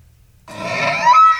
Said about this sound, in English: It was an elk. It was an elk. It was an elk bugle